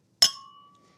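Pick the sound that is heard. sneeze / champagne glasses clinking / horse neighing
champagne glasses clinking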